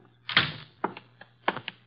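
A door opens for a visitor with a cluster of sharp clunks and rattles, a heavy latch clack first and then several lighter knocks and clicks at uneven intervals. No voices are heard.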